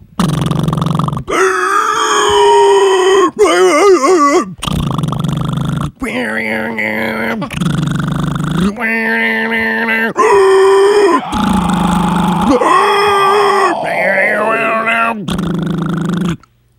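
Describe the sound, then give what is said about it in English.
A single voice imitates a band's first song from memory, mimicking its drums, guitar and vocals, switching rapidly between gruff grunts, growled riffs and warbling sung wails in a loud, nearly continuous stream of short bursts. “I can do the drums, guitar, and vocals.”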